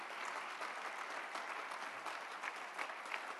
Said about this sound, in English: Now clap your hands if you believe that this morning.